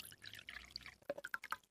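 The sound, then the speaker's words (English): Water splashes and trickles as it is poured into a jug, with a burst of bright, gurgling drips toward the end that rise and settle quickly. No one speaks. “So what I'm going to do is just pour the water into the jug for you, because that's a bit...”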